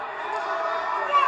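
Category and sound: crowd, crowd screaming and cheering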